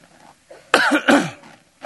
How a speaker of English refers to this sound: I apologize for my coughing here.